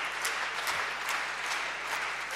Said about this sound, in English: And then somebody should stand up whilst you are clapping. It means that you've really, yes. That's it. It's called standing ovation. Standing ovation. Standing ovation. Yeah. That's a standing ovation.